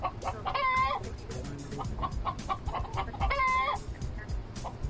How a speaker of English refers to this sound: It sounds like chickens clucking in this locker.